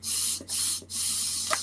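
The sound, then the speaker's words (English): Drawing on a vape device with a tight, cigarette-like draw: a steady, breathy airflow hiss broken by two brief pauses into three pulls, the last one longest, with a faint squeaky whistle near the end. “Oh yeah, the draw is gonna be really tight. It's exactly like a cigarette draw.”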